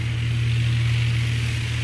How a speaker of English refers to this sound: I'm in the co-pilot seat of the small Cessna plane, and we're circling the Bolivian Amazon.